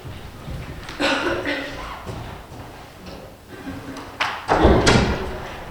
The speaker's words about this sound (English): Just a second while I close the door again. I can hear the basement.